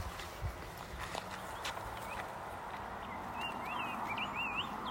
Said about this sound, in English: Oh, listen to the birds.